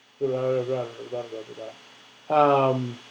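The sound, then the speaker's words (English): A voice imitates the echo heard on a phone call: a run of short, tonal vocal bursts, a pause, then one longer drawn-out sound, fairly loud over a faint background hum. “No, it was the echo, not me talking.”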